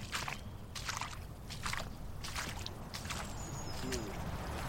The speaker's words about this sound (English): But first I'm going to put my shoes and socks back on and squelch. We're going to squelch back across a couple of miles of squelchous land.